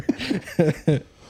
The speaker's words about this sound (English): But I fucking hate my cough, though, for sure. I sound like a grumpy old man when I cough. Like, I've been smoking cigarettes for, like